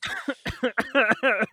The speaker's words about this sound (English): Well, if you keep vaping on the show. And coughing, then you're not going to get any syndication.